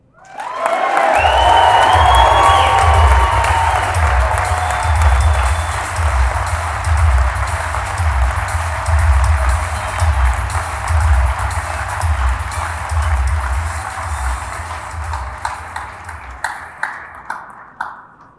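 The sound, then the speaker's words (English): An audience at an event applauds an honoree, breaking into sustained applause with cheering and whistles at the start, a dense wash of clapping that carries on steadily before thinning into scattered claps at the end. “Let's give him a big round of applause one more time.”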